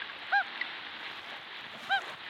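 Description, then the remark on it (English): A loon's hoot call, played back on a phone, gives two short, soft hoots about a second and a half apart, each a brief mellow tone over a steady background hiss. No one speaks. “And this one is the hoot sound.”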